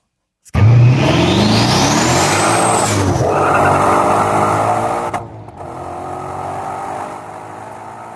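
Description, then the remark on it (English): A race car engine roars, recorded at the front of the car, a rising turbo whine sweeping upward over the first few seconds before the revs drop, then a steady throaty idle resumes after a brief cut. “The first is the front of the car, and you hear the turbos wind up.”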